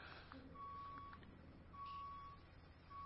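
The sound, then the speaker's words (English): A truck's reversing alarm sounds three steady, evenly spaced beeps over a constant low engine rumble, with no voices. “But I'm wondering if it's kind of like that beeping sound that you just kind of, it fades into the background every now and then.”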